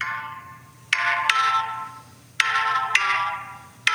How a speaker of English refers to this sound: Oh, this is a different feel. Yeah. Guitar riff, that's cool.